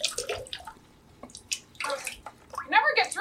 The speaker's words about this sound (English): What are you doing? Why are you pouring in the toilet?